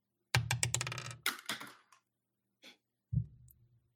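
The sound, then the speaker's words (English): Several dice rolled together clatter across a hard surface in quick rattling bursts, with a lone click partway through and a second, shorter tumble at the end. Fairly loud, with no voices. “We had a lot of numbers, so we had to roll multiple dice.”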